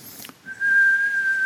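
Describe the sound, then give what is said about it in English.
A single high-pitched whistling tone of an incoming artillery shell on a battlefield emerges after a brief quiet moment, heard in the distance, and holds steady at one pitch, fairly loud and sustained, with no voices. “Now as we're standing there, we're kind of walking across this field, all of a sudden we begin to hear in the distance this whistling sound.”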